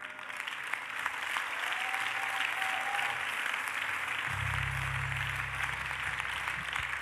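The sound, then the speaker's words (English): An audience claps steadily for several seconds, a dense, even wash of many hands with no clear individual beats, while a low sustained droning tone comes in partway through. “You see, you cannot clap.”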